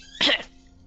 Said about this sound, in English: Like, she doesn't want to talk a whole lot because she's afraid of coughing again.